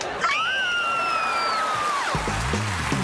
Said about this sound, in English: Oh. I'm so excited. I could scream. Want to do it with me? Guys, ready?